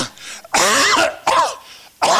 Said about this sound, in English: It's just like COVID. I'm coughing.